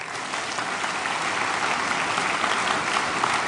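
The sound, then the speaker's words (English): A church crowd applauds steadily, a dense patter of many hands clapping at an even, fairly loud level for a few seconds with no voices over it. The applause is for the lead pastor as he comes up at the end of a morning service. “So would you give him a round of applause as he comes up?”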